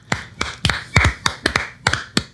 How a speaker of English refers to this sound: can we just, for a moment, just clap for Daniel Kaluuya? Kaluuya, please.